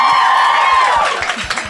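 Loud audience applause for Andi Dorfman fills the whole moment, dense clapping under a sustained cheering whoop that slides slowly downward in pitch before the clapping carries on alone.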